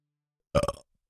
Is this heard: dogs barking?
no